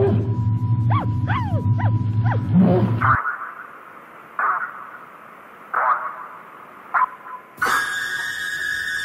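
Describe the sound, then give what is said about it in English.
In a film scene, a father barks like a dog at his son in several short, harsh bursts at irregular intervals. Eerie sliding electronic tones and a low drone come first, and a bright metallic ring cuts in at the end. “this scene from The Grandmother, perhaps, where the father barks at his son while treating him like an animal”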